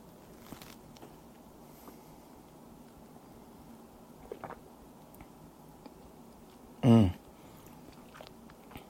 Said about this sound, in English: So I'm going to go ahead and take my second sip. And on my second sip, I really want to wash it around and get a good sense of what's happening.